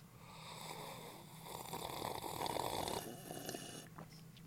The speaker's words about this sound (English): I don't have a crackable. I have a sippable. That's all. Let's get a good sip of coffee together.